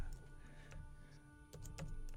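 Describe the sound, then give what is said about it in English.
Keys clatter on a computer keyboard in a few irregular clicks, clustering toward the end, over a steady low electrical hum with no one talking, as text is typed for Facebook and Periscope. “And bear with me because I'm typing this in two places, on Facebook and in Periscope.”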